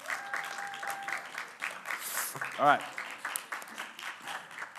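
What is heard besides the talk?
audience clapping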